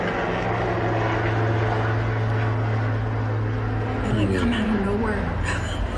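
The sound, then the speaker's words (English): A loud, steady helicopter engine whines and drones near the Helico Sonoma hangar, its low rotor hum holding even before the pitch shifts upward near the end as it spools for liftoff. “As a helicopter gets ready to lift off near the Helico Sonoma hangar,”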